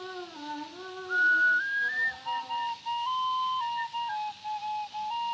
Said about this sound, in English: Go away, you boys. Stop that whistling. It's time you were in bed with the other worms.